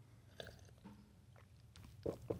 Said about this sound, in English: Speaking of green tea, we got some green tea. Tea sounded good for the episode, but now I'm realizing all the slurping sounds on the mic might be annoying.